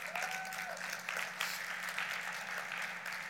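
An audience applauds a musician being called up, steady for a few seconds, dense clapping at an even, fairly loud level, with a brief whistle or cheer rising early on.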